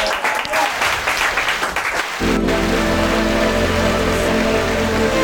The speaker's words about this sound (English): Full on applause. I had to add in my own applause there.